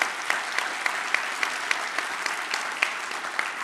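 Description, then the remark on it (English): Steady applause from a church audience during the pastor's sermon, a dense patter of many hands clapping at an even, moderate level, with a few sharper claps standing out and no voices over it. “Now, some of you, I hope, are not clapping because you think I'm being pejorative or condescending to the Black Lives Matter.”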